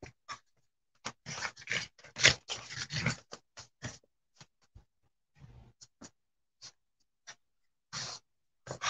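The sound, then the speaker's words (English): Dogs, including a white female dog, romp together with a dense flurry of scuffling, snorting and mouthy chomping sounds early on, then scattered short bursts and pauses as the rough play continues. No one speaks. “Uh-oh, she's playing again. She wants to play with you.”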